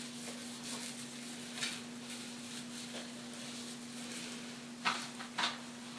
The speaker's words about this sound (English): Now I'm just moving some poop bags off my table.